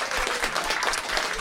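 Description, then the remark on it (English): An audience at a live show, the Rabbit Hole, claps in a steady, dense round of applause, many hands together making a bright, even patter that stays loud throughout with no voices standing out. “Well, listen, give her a round of applause.”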